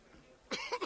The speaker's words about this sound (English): He's coughing now. You going to make it, pal?